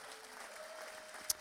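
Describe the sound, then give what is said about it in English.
A church audience clapping to praise Jesus for his word: a steady, soft wash of many hands applauding together, with one sharper, louder clap near the end. No one speaks. “Why don't we give Jesus a big clap for his word right here?”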